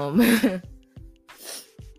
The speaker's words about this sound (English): Oh, man. I hope y'all didn't hear me sniff. Y'all probably did. And y'all probably like, ugh, that is so nasty.